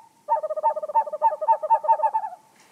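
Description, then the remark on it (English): A screech owl gives a rapid, quavering run of hooting notes lasting about two seconds, clear, slightly trailing off at the end, with no voices. “Screech owls start courting as early as February, so now is the ideal time to get started.”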